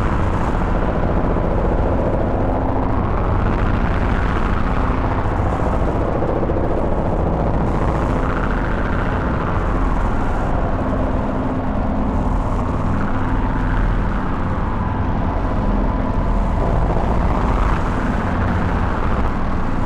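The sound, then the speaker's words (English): A deep, buzzy synthesizer drone from a Kersos set to its lowest octave, a complex waveform rather than a sine wave, without the Morphogen, sustains for the whole stretch, thick and rich in low harmonics, with a slow filter sweep rising and falling roughly every five seconds. No voices. “I turn the Kersos down to the lowest octave it goes, mimicking that low frequency sine wave we had going in there before, but now it's more of a complex waveform instead of just a sine wave.”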